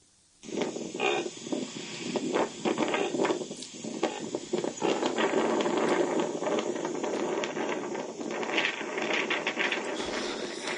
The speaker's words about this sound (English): Yeah, if there's anything cuter than just an adult reindeer, it's probably a baby reindeer. And so here's one making what's called a honking vocalization.